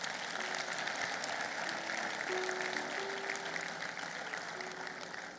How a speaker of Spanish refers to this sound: Si el Señor te habló en esta tarde, dale un aplauso a Dios.